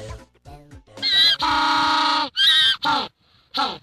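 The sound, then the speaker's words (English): A penguin's mating call: soft low grunts build into loud, harsh, donkey-like braying, with one long sustained bray followed by several shorter honking bursts, no talking. “It is actually a penguin.”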